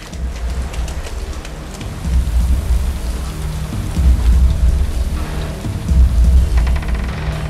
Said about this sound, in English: Let's say we've got a storm coming up. Brace yourself!